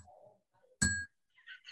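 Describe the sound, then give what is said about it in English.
A single bright clink of glasses touching in a toast, ringing briefly with a clear chime before fading, amid otherwise quiet, faint background sounds. “So let's then clink and drink. Clink and drink.”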